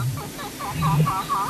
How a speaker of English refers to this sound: The brown snake eagle, which has a surprisingly quiet cry, soars over the savannas, plains, and semi-desert regions of sub-Saharan Africa.